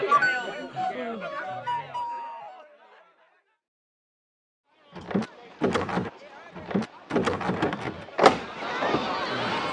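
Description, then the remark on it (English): After a tonal passage and a brief pause, a door is opened with a run of sharp rattles and knocks, followed by a dense scraping clatter. “You're not capable of opening your own door, then?”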